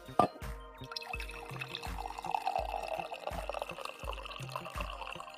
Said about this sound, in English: So yeah, I am going to get my my coffee. I'll do one better. I'll literally drink my coffee as you pour yours. There we go.